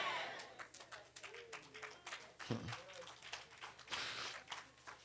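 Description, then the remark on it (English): The Trinity Baptist Church audience applauding the pastor, a dense patter of many hands clapping steadily, with a thump partway through and faint voices mixed into the clapping. “Those of you who don't like me didn't clap.”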